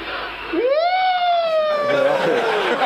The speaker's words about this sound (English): It's just such a soft kind of siren.